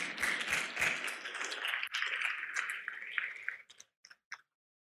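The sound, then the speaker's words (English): A crowd claps together in steady, dense applause that thins out after a few seconds, ending with a handful of scattered individual claps before silence. “Someone wants to clap, so you can join in.”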